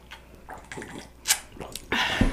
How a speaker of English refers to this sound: Now I'm gonna take a sip of eggnog.